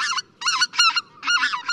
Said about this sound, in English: The lilting voice of this goose inspired a nickname, the Laughing Goose.